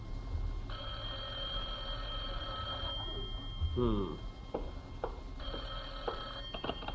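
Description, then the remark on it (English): A telephone bell at Jack Benny's house in Beverly Hills rings in two long bursts separated by a short pause, moderately loud over a muffled, hissy background with a few brief knocks between the rings. “Rochester, the phone.”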